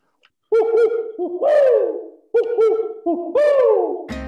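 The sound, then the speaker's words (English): A person wearing an owl mask imitates an owl, voicing two loud hooting phrases, each with quick wavering hoots and a long sliding call. A brief burst of another sound cuts in at the very end. “I thought that the owl would be more realistic if you could see an owl face on my face instead of my face when I go.”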